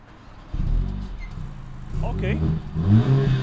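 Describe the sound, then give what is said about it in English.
A Mercedes car exhaust on its lower setting revs at a moderate level, a deep rumbling engine note that swells and climbs in pitch a couple of times, fairly loud after a brief quiet start. “Okay, that's the exhaust on the lower setting.”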